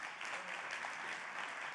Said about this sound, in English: Would you guys just give a round of applause for Bill?